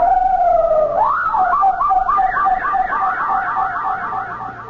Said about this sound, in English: But then, you see, it happened. The parrot made that incredible sound again.